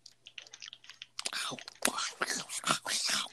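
Wet, smacking mouth noises from someone loudly chewing food with their mouth open, with sticky clicks that begin faintly and grow louder and busier toward the end. No clear speech.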